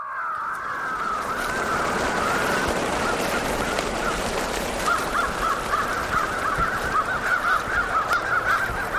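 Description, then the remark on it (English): Harsh, repeated crow distress calls play from a tape recording broadcast to drive a roosting crow flock out of trees for the night, loud and continuous, a frantic chorus of alarm calls over a dense, noisy background, growing into rapid rhythmic cawing in the second half. “A tape recording of a crow distress call broadcasts the news that this is no place to spend the night.”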